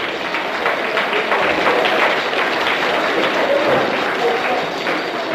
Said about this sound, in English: I would like us all to give brothers and sisters a clap, brothers and sisters, give us a hearty clap for what they've done. Come on.